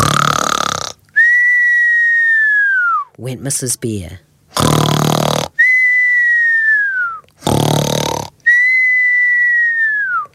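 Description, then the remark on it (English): A voice imitates the snoring of Mrs. Bear, a story character, three times in a steady rhythm, each a loud, rasping snort followed by a high whistling breath that slides downward, with a few spoken words between. “Mrs. Bear began to snore.”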